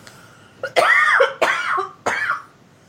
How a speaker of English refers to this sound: I'm so sorry. I know you're coughing in their ear, and I would, Oh my gosh. Mute that, but whatever.